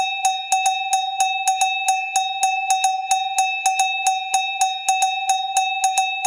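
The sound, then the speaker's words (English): A cowbell is struck over and over in a quick, steady rhythm as a 'cowbell tip of the day' jingle, each bright metallic clank ringing into the next with a sustained tone. It plays loud and alone, with no voices. “And now it is time for your cowbell tip of the day.”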